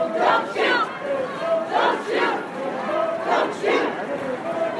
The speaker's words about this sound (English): Again, with the don't shoot, hands up chant.